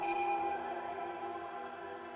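A sonar-like scanning pulse, a very small echo wave released by pressing a scan button on a suit that quickly scans the planet, rings out alone: a bright sustained electronic tone with layered harmonics that holds steady and then slowly fades, fairly loud.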